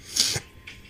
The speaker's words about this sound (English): Gosh, I am sorry. I'm sniffling a lot now.